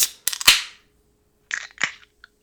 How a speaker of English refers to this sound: But anyways, tonight we're drinking Weapons Check, which is a red ale from 1912 Brewing Company in Tucson, Arizona. So local beer for me. I'm going to crack one right now.